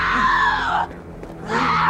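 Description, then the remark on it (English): A woman screams in fear as Shang takes her: two loud, high-pitched, strained cries separated by a brief pause, the second rising as the first tapers off. “The way she screams when Shang is taking her is like she's fearing death, like in that moment, which I guess I can understand, but.”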